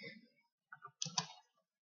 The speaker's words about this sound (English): I'm just typing something.